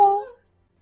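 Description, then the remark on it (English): A single short meow from a cat, clear and tonal, fading out quickly after about a third of a second with silence following. “Do you want to join our D&D party now, meow?”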